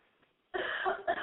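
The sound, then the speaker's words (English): A harsh cough bursts out after a brief quiet moment, followed by a second shorter hack, loud and rough with no talking. “quick cough break, hold on.”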